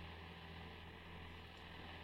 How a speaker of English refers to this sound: But you kind of hear like this white noise going on.